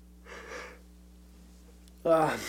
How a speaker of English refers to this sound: Keep yawning.